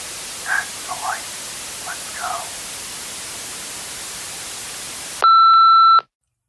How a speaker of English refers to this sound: Another voice, however unrecognizable, broke over the static.